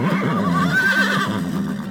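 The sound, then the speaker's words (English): A person imitates a horse's neigh with a loud, quavering whinny that rises and wobbles for about a second before trailing off into a breathy, fading sputter. “Oh, well, I guess I'll have to play the horse myself.”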